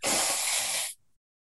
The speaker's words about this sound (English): I have to blow my nose. If we could pause for a second.